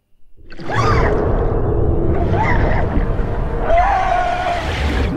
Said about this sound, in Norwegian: Bilen står og går, altså.